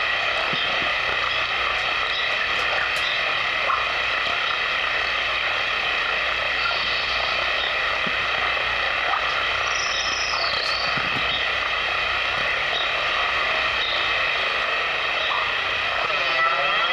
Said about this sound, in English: Here's reverb chorus, and there is the rate right there. In section two, I bet the rate will be really cool, so we'll put some control voltage into that.